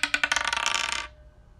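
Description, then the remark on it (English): Dice roll across a slightly rubbery plastic hotel-room table in a quick run of sharp clicks that speed up, blur together, then stop after about a second. Fairly loud, with no voices. “For all you people that are expecting dice rolls, another one.”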